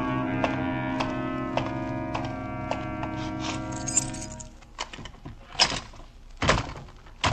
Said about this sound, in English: Come on, door, open. What do you want me to say to you, Dora? Sesame? All right, sesame. If there's anything I hate, it's a door that has to be coaxed. Take that.